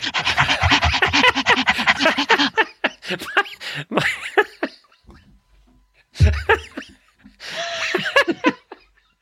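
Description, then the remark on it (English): People pant loudly and rapidly in bursts, a quick rhythmic huffing like a dog, broken by short pauses and some breathy laughter before the panting resumes. “It's the first time we've ever panted.”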